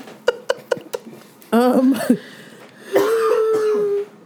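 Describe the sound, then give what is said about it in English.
A few sharp, quick coughs come first, followed by a longer, gravelly throat clearing and a drawn-out hacking rasp, with no talking. “pardon me, I'm going to be coughing and clearing stuff because it's the most annoying time of the year for me”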